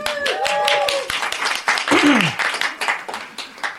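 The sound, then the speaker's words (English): Loud, dense applause from the audience at the Wicked Library Halloween special, many hands clapping at once in a continuous rattle, with a few whoops and rising whistles mixed in before it starts to thin out. “If you don't have a plate of food, please give yourself a round of applause.”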